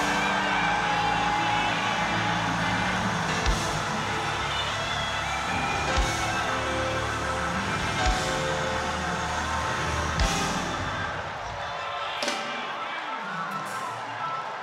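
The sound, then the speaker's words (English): A large audience shouts fervent prayers to God all at once for about 30 seconds, a loud, dense roar of overlapping voices, with sharp cries and claps breaking through before the clamor eases slightly near the end. “I dare you to give him 30 seconds of crazy prayer.”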